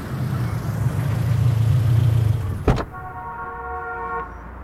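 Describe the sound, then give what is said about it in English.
A taxi's car engine idles with a low, steady rumble, then a sharp thud cuts in and the rumble drops away, followed by a steady electronic tone lasting about a second. “Okay, I need a lift. Hey! Taxi!”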